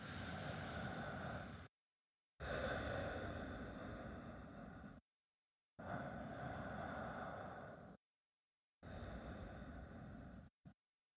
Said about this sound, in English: Why don't you take some breaths right now and start to breathe in and out, and we'll give you time to think through those things. Okay, so let's start breathing.